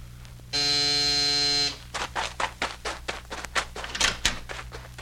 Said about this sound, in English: Hey, who rang this doorbell?